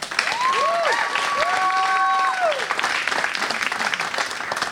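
A large audience applauds loudly and steadily, dense clapping filling the whole stretch, with a few long whistles rising and falling over it before the applause begins to thin out.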